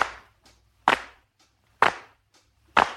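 One-handed clapping keeps a steady beat: four sharp, bright claps roughly a second apart, with softer taps falling between them over a low, steady hum. No one speaks.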